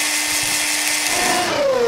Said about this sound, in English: Also, we did say we are next to a construction site. That's a construction site for Nutribullets. That's what you're hearing.